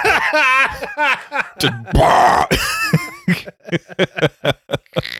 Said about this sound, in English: I love that you're at the level of ill where your cough sounds like a dubstep bass drop.